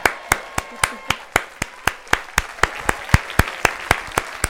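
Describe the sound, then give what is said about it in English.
A queued-up applause sound effect played on a show, with sharp, evenly spaced claps, roughly eighteen in a steady rhythm, fairly loud and crisp, with no talking over it. “You got that queued up, that applause?”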